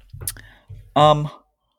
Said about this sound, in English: Just taking a sip of water here.